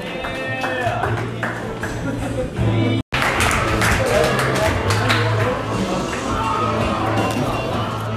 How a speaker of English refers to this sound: All right, clap a little more right here for John Atkins.